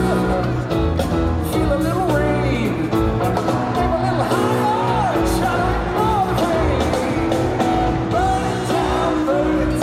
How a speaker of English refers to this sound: But I didn't realize there's a line that says, "Feel the rain." And I heard it in the crowd that there's a huge, gigantic cheer on the recording.